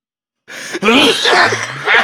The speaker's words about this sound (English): Oh, that was a heavy cough. Damn.